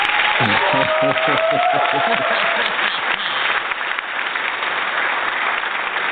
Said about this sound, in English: I think the audience needs to give you a round of applause.